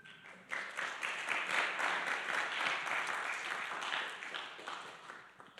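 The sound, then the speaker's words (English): A church audience breaks into sustained applause for the gospel during a morning service, a dense wash of many hands clapping that starts abruptly, holds steady and loud for several seconds, then thins slightly toward the end. “How about a round of applause for the gospel this morning?”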